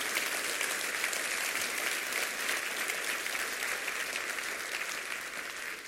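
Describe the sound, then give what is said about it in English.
A crowd claps steadily in dense, sustained applause with no voices, holding loud and even for about six seconds before easing slightly at the end. “Somebody needs to clap your hand to say, I got a new word to go share.”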